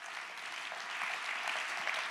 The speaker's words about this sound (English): Let's clap our hands and give him praise for that.